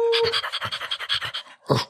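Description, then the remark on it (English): A person imitates a dog panting: a quick, steady run of breathy huffs, ending in one louder gasp. “I am a dog. I'm a dirty dog.”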